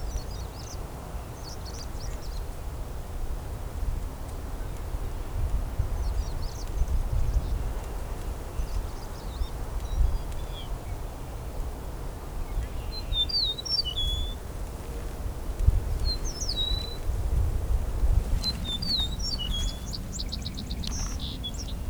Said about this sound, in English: So this eastern meadowlark right now is singing from the ground. It is going through the grasses.